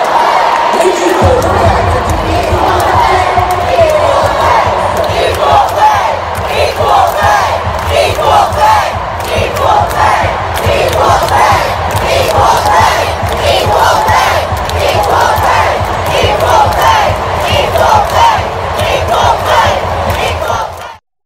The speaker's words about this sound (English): So this is what I want you to see, what the crowd said right at the end of this match. Let's play that video.